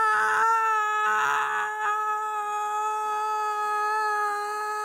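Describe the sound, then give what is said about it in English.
A person sustains a loud, steady, wailing "aah" in a high pitch, imitating a young boy screaming and crying when told to get out of his bath at bedtime, held for nearly five seconds with slight wavers and no other talk. “He cries, right? It's blares. Aah!”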